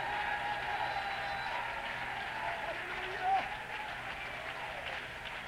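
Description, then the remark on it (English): A large audience claps and cheers steadily, a dense wash of applause with shouting voices mixed in, sustained and loud throughout without pause. “Do you feel like clapping again? Do you feel like shouting again?”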